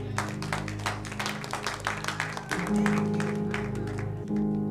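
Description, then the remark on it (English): A crowd claps for the Lord Jesus in a steady, dense patter of overlapping handclaps, fairly loud, over a sustained low musical drone or organ chords. “Clap for the Lord Jesus.”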